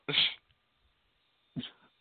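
Two harsh, breathy coughs about a second and a half apart, the first louder and longer, the second a shorter burst, with silence between and no talking.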